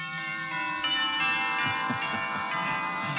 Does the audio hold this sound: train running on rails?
no